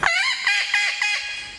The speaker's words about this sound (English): El Yunque captive parrots. El Yunque wild parrots. Rio Abajo captive parrots.